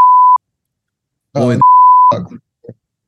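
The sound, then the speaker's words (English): A beep button is pressed repeatedly, its steady electronic tone beeping on and off in uneven long and short bursts, almost like Morse code, with brief vocal groans or murmurs squeezed between the beeps. “The button got some real use right there. Sounds like fucking Morse code.”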